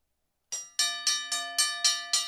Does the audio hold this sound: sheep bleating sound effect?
no